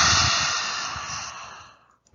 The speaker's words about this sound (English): Breathe in through the nose, stick out the tongue, lion's breath, they could call it, and say, H-A ha sound.